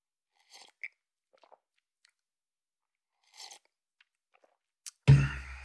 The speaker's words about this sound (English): Oh, big bang in the studio there. Hope you folks enjoy that ASMR of the coffee drink. I always put that in there for a nice touch.